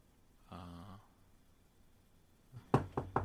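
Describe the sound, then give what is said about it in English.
A short voiced hum is followed, after a pause, by three quick, firm knocks on a door, fairly loud, in an uneven rhythm. “Then it's like a movie where at the first knock, he's shitting.”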